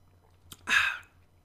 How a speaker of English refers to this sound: Give me a second to chug some water.